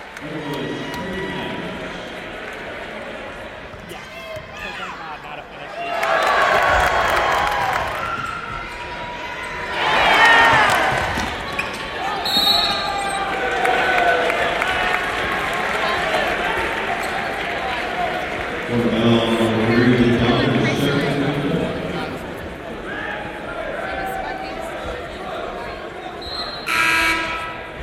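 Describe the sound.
A basketball arena crowd surrounding the court roars and murmurs continuously, with swells of cheering, a few horn blasts and sneaker squeaks over steady ball bounces and shouting voices; the audio follows cuts between three camera positions.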